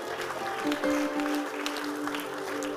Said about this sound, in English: Give the Lord a clap.